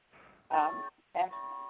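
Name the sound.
chimes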